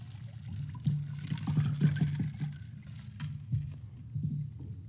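Water is poured into a glass, a low gurgling splash lasting a few seconds, followed by quiet sipping and swallowing close to the microphone, with no talking.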